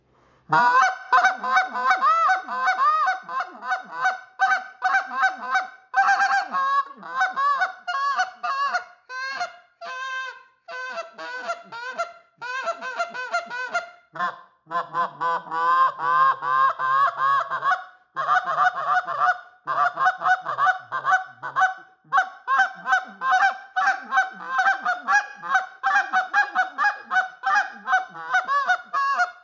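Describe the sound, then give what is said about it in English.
A molded acrylic goose call blown in rapid, rhythmic bursts of loud, nasal honks and clucks, with quick double notes and some drawn-out moans, played continuously without talking. “But anyway, I'm going to run this big dog for you. This is our molded acrylic call.”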